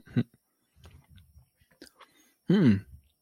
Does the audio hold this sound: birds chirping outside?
no